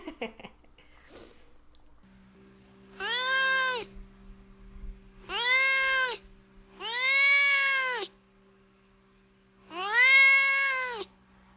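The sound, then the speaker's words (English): A cat named Duarte meows four times, each call long, drawn-out and rising then falling, loud, with short pauses between them and a faint steady hum underneath. “where my cat Duarte will share his opinions about the book.”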